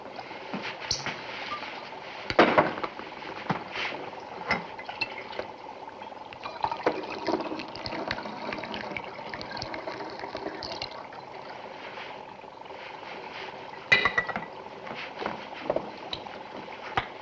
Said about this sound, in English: Now pour the rest of that stuff into this jar.